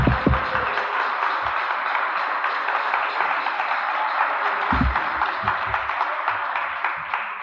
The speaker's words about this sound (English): There's a minister at the back of the meeting here. Brother, would you come up here a moment? I met him years ago, and I'd love him to come up. Give him a clap.